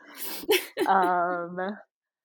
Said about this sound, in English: sorry, that was my mom sneezing. I don't know if you hear that. It's cool.